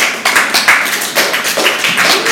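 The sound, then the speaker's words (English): About five audience members clap at once to vote no on ketchup on a hot dog, giving sparse, uneven hand claps, with no other sound. “Clap for no.”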